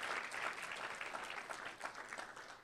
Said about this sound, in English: Come on, we can clap that up. She's qualified to lead.